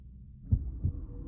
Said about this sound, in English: Heartbeats. Nice close up.